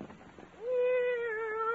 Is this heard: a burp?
no